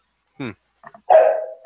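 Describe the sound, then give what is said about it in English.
A neighbor's dog barks a few times: one short sharp bark, a couple of faint yips, then a longer drawn-out bark that trails off. No one speaks over it. “There's my neighbor's dog.”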